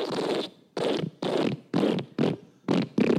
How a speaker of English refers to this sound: Yes. This actually sounds... It's actually called the wet fart.